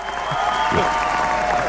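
A crowd cheer sound effect, played as a woman leaves the room: a steady, dense wash of clapping and voices that holds at the same loud level for the whole short burst.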